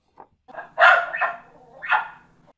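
A dog barks several times: a soft yip, then a quick cluster of loud barks, a brief pause, and one more bark, with no voices.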